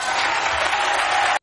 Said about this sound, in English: How about the people clapping? That's how illiterate they are. These people are so ingrained in race that anything you say that the poor black community is suffering, oh my God, yes, let's clap.